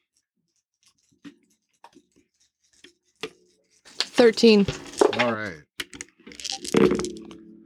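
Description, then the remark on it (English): A few small, sharp clicks and clatters tap out irregularly as dice are rolled for initiative in a tabletop role-playing game and tumble across a hard surface, followed by people talking. “Let's roll initiative first.”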